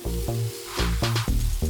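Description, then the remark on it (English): Steaks being cooked medium rare sizzle loudly in a hot pan, a continuous crackling hiss over a low hum, with a few sharper bursts of spitting fat. No one speaks. “I cooked them up, medium rare.”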